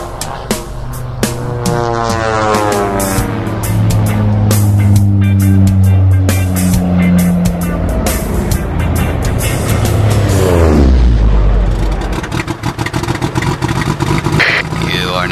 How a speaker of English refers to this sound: Whoa, kill the motor, dude.